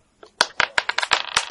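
Dice clatter across a hard tabletop during a game, in a quick run of sharp, bright clicks and taps that bounce irregularly for about a second before stopping, the roll coming up a 1. No voices are heard.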